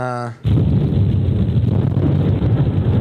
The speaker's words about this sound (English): They're weird sounds that the sky makes.